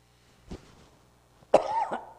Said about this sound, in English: I got a cough drop trying to drown that cough, but sometimes it helps, sometimes it doesn't do everything it's supposed to do.